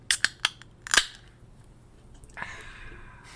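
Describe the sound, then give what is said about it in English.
A can of Hawks American Pilsner beer, brewed by Monic Beer Company of Louisville, Kentucky, being opened: a few sharp metallic clicks as the tab is worked, then a soft pop and a steady fizzing hiss that trails off. No one speaks. “That is sound of the beer of the Dangbros. Opening.”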